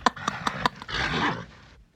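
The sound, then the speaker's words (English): A bull snorts and breathes heavily: four quick, sharp puffs in a row, then a long, rough, rumbling exhale that trails off. “It was the sound of a breathing bull.”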